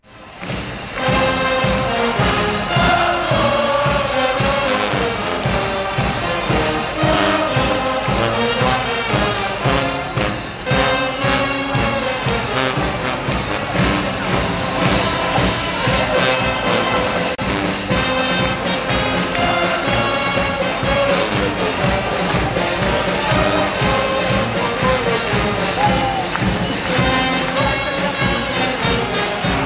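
A lively band plays loud, steady, upbeat music with a driving beat and brassy tones throughout, and a crowd seems to cheer along beneath it.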